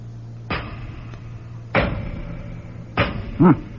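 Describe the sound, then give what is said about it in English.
Three heavy hammer blows strike a thick door at slow, steady intervals as someone tries to get the doors open, each a sharp thud with a short ringing decay over a low hum. A brief voiced grunt follows the last. “All right, then we'll get the doors open by ourselves. Let's see how thick they are. Throw me a hammer, would you?”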